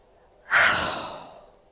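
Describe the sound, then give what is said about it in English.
A single sneeze bursts out of near silence, a sharp, breathy, hissing blast that trails off over about a second. No one talks. “Have you ever sneezed while you're recording a podcast? Because that's exactly what just happened.”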